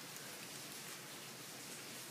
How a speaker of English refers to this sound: Is it raining? Not. It sounds like it. Sounds like it's fucking pouring. Oh, yeah. Bro, oh, it's raining its ass off.